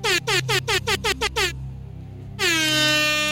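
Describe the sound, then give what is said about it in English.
A loud air horn sound effect fires off a rapid string of about seven short blasts, pauses briefly, then lets out one long sustained blare to finish. “Sorry, I wanted to do an air horn for you.”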